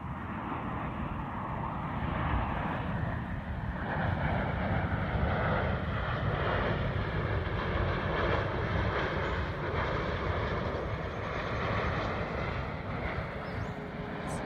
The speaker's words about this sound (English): Okay, that is the fourth time that same plane has flown overhead just like that. Here comes that same plane. This is like the seventh time.